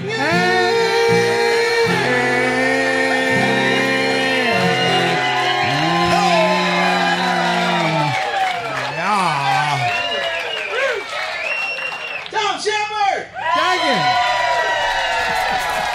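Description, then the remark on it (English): A rowdy crowd at T-Bone Tom's, a trop-rock-friendly bar in Kima, Texas, yells and screams over one another continuously and loudly, with shouts, whoops and scattered clapping in a dense, chaotic din. “All right, lots of yelling and screaming going on.”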